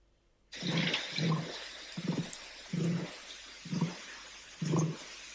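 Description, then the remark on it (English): An emu's deep drumming call: a series of six or seven low, booming thuds spaced about a second apart, fairly loud over a steady hiss of background noise, with no talking. “This is the sound of an emu.”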